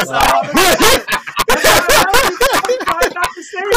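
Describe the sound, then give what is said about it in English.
A person imitates a dog, letting out a rapid string of loud, yappy barks and yelps for a few seconds. “They're in the business of being noticed, like my dog.”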